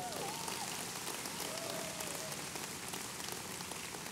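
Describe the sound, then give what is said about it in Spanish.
A crowd applauds steadily, a dense wash of many hands clapping at once, loud and unbroken for about four seconds with no one speaking. “Ya, dale un buen aplauso.”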